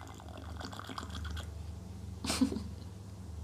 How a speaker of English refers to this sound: So a little bit more ASMR of me sipping my tea before we go.